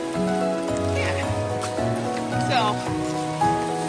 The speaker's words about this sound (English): We're braving the rain. 40 degree temps. We're gonna make it happen. And yeah, this is like 40 degrees. Uh-huh. It's a little cold. It's cold. I got like 3 layers on underneath this poncho.